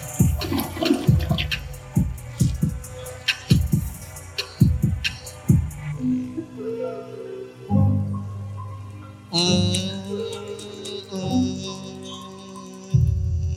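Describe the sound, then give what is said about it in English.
A toilet flushes, a loud rushing swirl of water with gurgling and knocking bursts that rise and fall over several seconds, with no one talking. “Cause we flushing that thing.”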